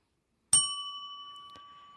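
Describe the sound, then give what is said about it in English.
A single bright bell ding, rung during a game of Never Have I Ever, strikes sharply, then rings out with a steady metallic tone that slowly fades; a faint small tap is heard partway through the ringing. “Let's see if people can guess whether that bell was me or Isaac Fitzgerald.”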